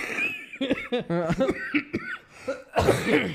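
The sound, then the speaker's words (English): A person coughs, with rough, broken voiced bursts that sound almost like laughter, ending in a harsher, louder cough. “I still have a cough.”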